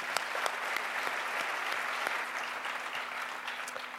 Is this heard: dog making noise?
no